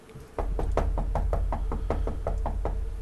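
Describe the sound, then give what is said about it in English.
A rapid, steady series of about a dozen knocks on a door, evenly spaced and fairly loud, over a constant low background hum with no voices. “Knock loud and then soft and then loud again.”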